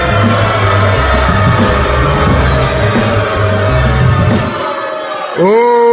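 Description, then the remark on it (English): A loud, dense mass of crowd voices at the Hawthorne Theater jeers and shouts in disapproval at a battle line for about five seconds, ending with a single drawn-out, rising vocal cry. “The Hawthorne Theater crowd is not happy”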